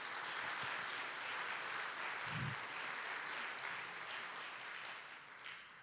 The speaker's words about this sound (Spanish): Dar un aplauso fuerte, Señor.